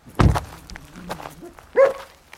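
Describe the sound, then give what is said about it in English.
A dog barks twice, a loud, rough bark followed after a quiet pause with soft thumps by a higher, more tonal yelp, with no voices. One of two dogs living at a house overlooking the shores of Loch Derg, outside the village of Port Row in County Tipperary. “Gerry lives here with his two dogs and one horse, Tiger Roll's mother.”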